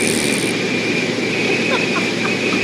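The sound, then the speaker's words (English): A loud, steady roar of wind rushing through an open cockpit window of a plane, heard in the pilots' radio transmission, constant, with a faint voice buried underneath and a thin whine running through it. “The radio transmission from the pilots was difficult to hear because the sound of wind in the background”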